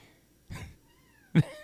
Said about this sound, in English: I've got a cat meowing. Is that thing in here? We've got a new cat, and it's obviously doesn't know how to shut up.